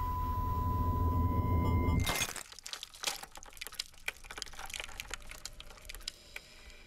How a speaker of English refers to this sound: I just picked it up and I dropped it and it smashed. Didn't you hear it? I did. I heard that.